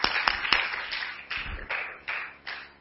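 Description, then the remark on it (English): An audience applauds steadily, giving a hand of praise for a job well done: a dense wash of clapping with a few sharper claps standing out now and then, moderately loud and continuing without pause. “Give them a hand of praise, y'all, for the wonderful job they did.”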